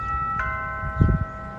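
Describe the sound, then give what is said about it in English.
A video doorbell chime, triggered by pressing the doorbell button and played on HomePods throughout a house, rings out as a sustained, steady tone with several bright harmonic pitches held for over a second, alongside some low rumbling and a soft thump partway through. “That chime that you heard went off on all the different HomePods throughout my house.”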